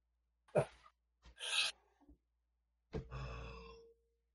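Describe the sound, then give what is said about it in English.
Someone rummaging through clutter searching for their dice: a few short bursts of rubbing and scraping, followed by a longer squeaky, grating scrape, with no talking. “Let me grab my dice.”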